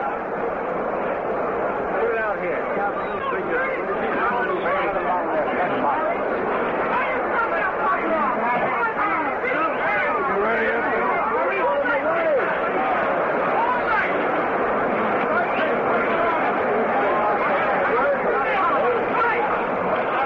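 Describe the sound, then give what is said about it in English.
A dense, steady crowd hubbub of overlapping voices and chatter at a boxing event fills the whole stretch, loud and continuous with no single voice standing out. “We queued you up to Bill Corum in a bit of a hurry, ladies and gentlemen, as there's quite a crowd in there.”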